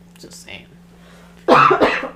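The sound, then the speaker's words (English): A loud cough erupts after a quiet moment, two harsh bursts in quick succession, preceded by faint breathy throat sounds; a lingering after-effect of COVID. “Because I'm COVID cough.”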